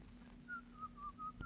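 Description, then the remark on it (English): A person whistles the tune Turkey in the Straw, a short, lively melody of four or five held notes in a steady run, soft, over a low background hum with no talking. “Oh, stop whistling that turkey in the straw.”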